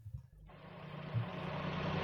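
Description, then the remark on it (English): A car engine kicks in after a brief low rumble and keeps running with a rough, steady, fairly loud chugging drone with grinding gears, heard on its own without any voices, as the mayor's car drives to the post office. “Chugga, chugga, chugga, chugga. Grind the gears.”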